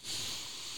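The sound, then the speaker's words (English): A deep breath drawn in during a cleansing ritual, a steady airy hiss that swells quickly and holds level for under a second, with no talking over it. “Big breath in.”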